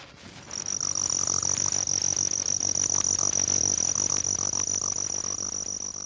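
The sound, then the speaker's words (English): A spotted ground cricket (Nemobius maculatus) gives a high, jerky trill that buzzes steadily, broken into uneven stuttering pulses, over a faint low rumble of background noise, with no voices. “A jerky trill is produced by the spotted ground cricket, Nemobius maculatus, which also sings in leaf litter in dry woods.”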